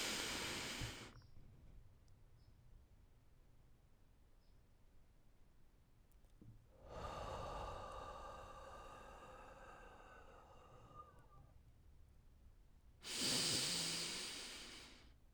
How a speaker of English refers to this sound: So let's take a deep breath in for 4 seconds. We're going to hold it for 7, and then we're going to exhale for 8.